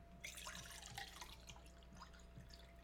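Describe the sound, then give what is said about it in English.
Fresh water pours steadily into a stainless steel cup, a bright splashing trickle with scattered drips, fairly quiet, with no talking over it. “Fresh water going into a stainless cup.”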